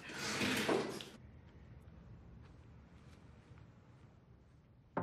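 A door is opened with a loud, broad rushing scrape, then a low, quiet rumble follows before the door shuts with a short, sharp thump at the end.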